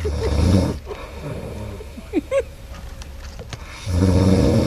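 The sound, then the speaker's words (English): Loud, bassy snoring recorded during a night's sleep, with two deep rumbling breaths at the start and end separated by a quieter pause holding a few faint chirpy noises. “I recorded my sleep last night and I would love to play you the audio”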